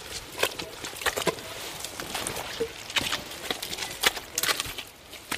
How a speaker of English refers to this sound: Typical sound of Anchor Island is the squelching of your boots.